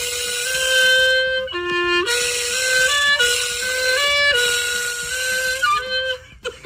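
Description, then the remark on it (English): A loud, whining power tool revs continuously while a man plays a reedy clarinet melody through sustained stepped notes, the two blending into a harsh, buzzing tune with no voices. “Number 5, apparently somebody combined what you would call music, I guess, instrumental music, with power tools being revved up.”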